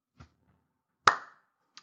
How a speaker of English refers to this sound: The gems, man. You know, I got to keep coming with the slow clap.